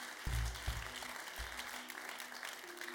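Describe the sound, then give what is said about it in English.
A church audience breaks into sustained applause as a clap to the grace of God during a sermon, a dense wash of many hands clapping together, with a few deep low thumps near the start and steady crowd noise throughout. “Give a clap to the grace of God.”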